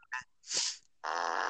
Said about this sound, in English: Who farted in the van?